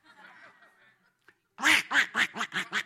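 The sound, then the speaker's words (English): People asked to quack imitate duck quacks, a rapid burst of about six loud, nasal quacks in a row, preceded by a softer, murmuring vocal sound. “Okay, so let's have some quacking over here. Can you do a quack for me?”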